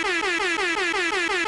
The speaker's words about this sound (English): Or just make an air horn pop up each time.